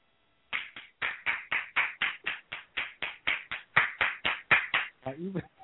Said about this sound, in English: Even the clapping is in a British accent. That's just... that was pretty good.